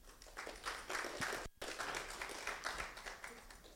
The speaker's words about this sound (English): Not a very emphatic clap.